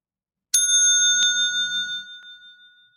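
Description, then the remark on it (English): A bright bicycle-style bell rings sharply once, followed by a second quick strike, its metallic tone lingering and slowly fading with a faint rattle underneath. “Ring the bell number one, right?”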